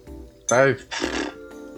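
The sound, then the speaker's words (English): A horse neighs once, loud: a short, quavering whinny followed by a rough, breathy snort, then quiet. “I'm getting confused by the horse there.”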